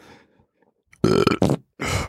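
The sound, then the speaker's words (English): A loud burp in a few drawn-out bursts, a long rumbling belch with brief breaks, then another belch after a short pause. Faint low murmuring comes before it. “Burp it up.”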